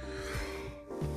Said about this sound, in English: Excuse me, I got this cough that I have no idea where it is, where it's come from. I don't know, but it's about to get a lump out of here because you can't be in here unless you pay rent, and it doesn't pay rent.